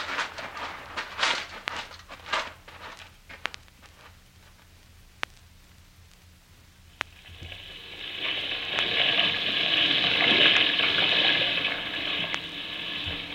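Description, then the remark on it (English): An old washing machine runs: uneven clunks and rattling knocks for several seconds, then a loud, steady rush of water filling or churning that continues to the end. No one speaks. “Let me turn this washing machine off, will you?”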